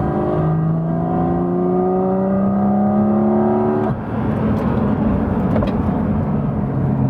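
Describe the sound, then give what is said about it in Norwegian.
A car engine climbs steadily in pitch as it accelerates, then cuts off abruptly as the driver short-shifts, asking the car to change gear, and pulls again at lower revs. Loud and continuous, with no talking. “Ja, det jeg som girer nå. Jeg ber bilen om å gire.”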